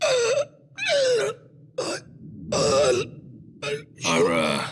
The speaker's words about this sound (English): He starts gasping after he sees John and Dargo. He seems almost happy, like he has a little Hynerian breathing problem, which is brought on by too much excitement, I believe, or something like that, yes. Or strong emotions.